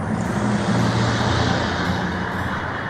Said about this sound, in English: Wow. Someone's playing Euro Truck Simulator outside your window. Very loudly.